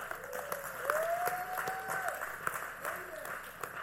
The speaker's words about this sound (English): Well, hello, give knowledge a hand clap.